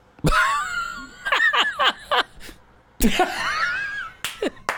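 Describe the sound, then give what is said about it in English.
A dog's owner gives two sharp, forceful coughs a few seconds apart, each answered by a burst of high-pitched whining and yelping cries from the dog, fairly loud. “His owner. Cough.”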